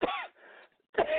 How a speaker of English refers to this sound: Number one, I'm coughing because I got bronchial asthma and it's acting up because it's wintertime here in Arizona.